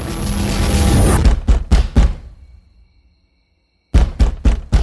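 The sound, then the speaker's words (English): Heavy pounding knocks on a door at 2 a.m. by a neighborhood militia night shift, loud: a noisy rumble, then two hard thuds, a pause of near silence, and a quick burst of four more forceful knocks. “Open up! I don't want to knock this door down, but I will...”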